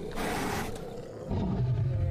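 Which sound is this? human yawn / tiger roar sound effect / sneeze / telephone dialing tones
tiger roar sound effect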